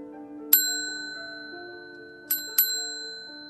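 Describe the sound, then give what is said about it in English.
A bright, bell-like ding sound effect rings three times, one strike followed after a pause by a quick pair, each leaving a clear, high, shimmering tone that lingers and slowly fades. “Insert ding.”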